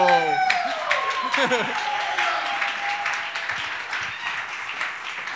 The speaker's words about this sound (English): So I need you to stand and welcome with a round of applause my wife,